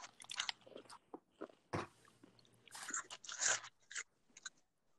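Crunchy chewing of cereal: a run of irregular, crackly bites and munches, bright and crisp in tone, with no talking over them and a faint low hum underneath.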